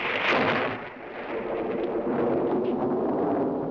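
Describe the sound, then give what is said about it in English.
A loud peal of thunder in The Addams Family rolls on for several seconds, a deep, rumbling roar that swells at the start, dips briefly, then holds steady without fading. No voices are heard. “Did I just hear a peal of thunder?”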